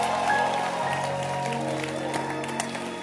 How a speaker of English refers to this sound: Ladies and gentlemen, if you are ready to receive, please help me and put your hands together to my pastor, my father, Bishop Doug Heward Mills.